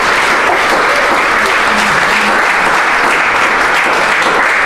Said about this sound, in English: So we can still give her a round of applause, right? Yeah.